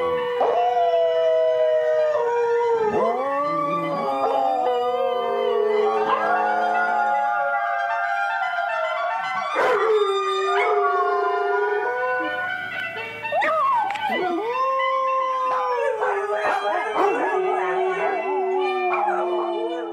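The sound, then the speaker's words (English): Several dogs howl together in long, wavering, overlapping tones, rising and falling in pitch, loud, with occasional yips breaking in and no pause for the full stretch. “Reason enough for us to celebrate that apparently lots of dogs are Sunday morning fans, too.”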